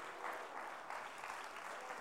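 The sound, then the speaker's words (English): A church audience claps together as a hand clap of praise for Jesus, in a steady, dense wash of applause that holds at an even level throughout, with no voices standing out. “Would you give him a hand clap of praise today?”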